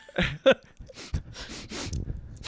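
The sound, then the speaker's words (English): A run of short, breathy sniffs, quick nasal inhales repeating in an uneven rhythm, with a couple of sharper snort-like bursts at the start and no talking. “What are you sniffing?”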